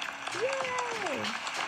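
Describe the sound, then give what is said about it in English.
A steady burst of many hands clapping fills the whole moment, with a drawn-out voice rising and sliding over the applause like a cheer; the applause is for a daughter's birthday. “I need more applause okay.”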